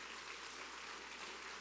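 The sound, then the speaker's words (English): A church audience claps together as praise for a preacher, a steady, dense wash of applause that holds at an even loudness throughout, with no voices breaking through. “Give the man of God another hand clap of praise.”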